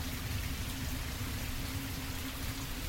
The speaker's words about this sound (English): It's been raining for as long as I can remember.